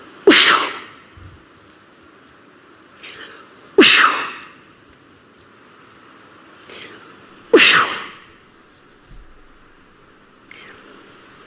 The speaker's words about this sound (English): Okay, yeah, she's walking around sneezing on everybody.